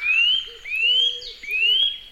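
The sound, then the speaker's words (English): A nuthatch gives a loud, ringing call: three clear, rising whistled notes, evenly spaced and repeated in a steady rhythm, with no voices present. “The nuthatch has a loud ringing call, a bit like a stone bouncing across ice.”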